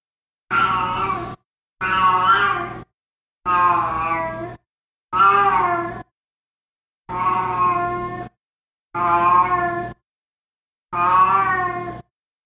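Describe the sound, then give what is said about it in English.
A female pet cat howls seven times in a row, each drawn-out, wavering yowl lasting about a second with short silent gaps between, loud and harmonic with shifting pitch, and no talking. “Some of the signs that we were up against are howling in the night, like listen to this.”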